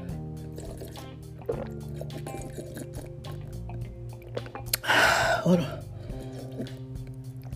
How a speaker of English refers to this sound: Hold on, y'all, wait a minute. I told y'all, I'm going to start sipping on this tea again. Hold on.